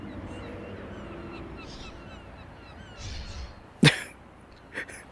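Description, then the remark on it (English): Seagulls call faintly over a steady wash of outdoor background noise, followed by a sharp, loud burst like a cough near the end. “Thanks for the drama seagulls there.”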